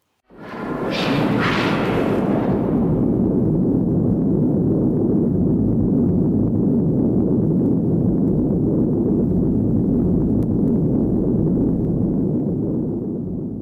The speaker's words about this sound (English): Firstly, maybe we should finally listen to the explosion. I think we need to hear the explosion. Okay, let's listen to the atomic explosion. Let's go.